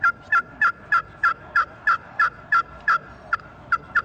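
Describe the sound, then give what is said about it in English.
A glass-surface pot turkey call yelps about a dozen times in a steady, evenly spaced rhythm, each note raspy and high-pitched, fairly loud with no talking over it. “That's a glass surface.”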